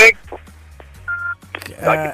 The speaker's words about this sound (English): nearly lost you there for a minute. Okay, you're not on the greatest of lines under the sun. Don't know if we can run with this. Can you hear me okay?